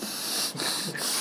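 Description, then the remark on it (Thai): Heavy, noisy breathing of a person leaning in right up against the microphone, a continuous airy snorting hiss with two brief dips where the breath pauses, loud and close with no talking. “เสียงที่ได้ยินมากก็คือเสียงหายใจฟืดฟาด”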